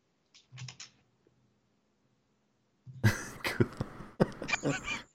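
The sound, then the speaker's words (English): Typing on a computer keyboard, fairly loud: a quick cluster of taps, a pause, then a longer busy flurry of clattering keystrokes. “Typing.”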